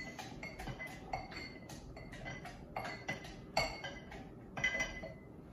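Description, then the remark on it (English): A big strawberry with its top cut off is muddled in a glass for a strawberry basil smash cocktail: repeated clinking and knocking against the glass, an irregular series of sharp taps over a low background rumble, with no one talking. “I'm going to muddle this down.”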